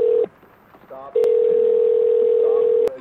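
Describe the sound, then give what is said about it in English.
A steady, loud telephone dial tone hums as a phone is dialed, cuts out briefly, then resumes and holds for nearly two seconds, with a couple of sharp receiver clicks and faint voices murmuring underneath. “Shut up, I'm on the phone. You are not. Well, I am now.”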